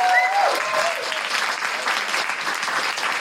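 A theatre audience at Soho Theatre breaks into steady, dense applause for guests from Where You At, holding for the whole stretch, with a brief high-pitched whoop or cheer rising over the clapping at the start.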